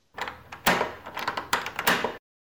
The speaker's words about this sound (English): Can you just open the door?